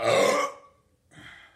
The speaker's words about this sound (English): Holy cow. I have a lot of technical glitches, including my throat hurts. I'm belching.